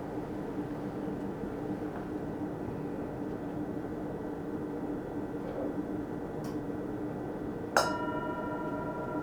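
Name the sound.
bell being rung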